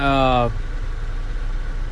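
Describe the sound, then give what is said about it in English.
A steady, low engine idle rumbles inside a parked truck, continuous, with a brief voice at the very start before the drone carries on alone. “Man, I'm just here sitting in the truck.”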